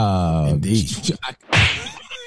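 A loud slap sound effect: a sharp smack bursting out after a short pitched vocal tone and a couple of quick hits, then fading off.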